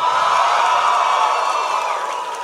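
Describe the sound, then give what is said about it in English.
A live audience cheers and whoops for a date, April 1834, in a dense, steady roar of many voices, holding loud for about two seconds before easing slightly at the end, with no one speaking over it. “The only podcast where people cheer for a date.”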